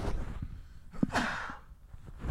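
A single muffled sneeze into a covered microphone placed down by the feet, a quick sharp intake of breath followed by a dull, smothered burst that fades quickly, with low rumbling handling noise around it and no talking.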